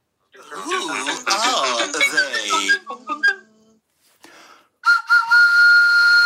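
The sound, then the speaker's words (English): A short jingle with a voice-like melodic phrase, then a sustained, piercing train-style whistle blast with a steady high tone that swells and holds to the end. “Don't you be blowing my whistle. Okay. All right, I've actually got the jingle for that as well.”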